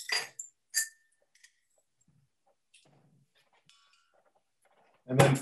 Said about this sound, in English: So sprouting is taking a seed, these would be adzuki seeds, and then starting the germination process by putting them in a jar. I'm going to put in 3 spoonfuls.